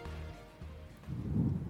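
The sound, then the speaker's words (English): Steady rain hisses continuously at night, around 10 p.m., outside a hostel, while a deep, rolling rumble like thunder swells louder toward the end. No voices are present. “It's raining, the door is locked.”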